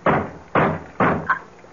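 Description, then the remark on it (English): Three heavy, evenly spaced knocks pound on a door, each thud ringing briefly before the next, followed by a fainter tap. Loud, with no voices. “Sounds like someone at the door.”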